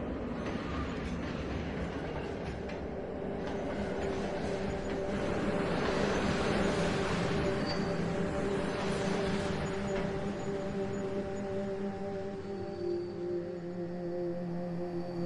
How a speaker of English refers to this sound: Train incoming on platform 2. Going to Queens.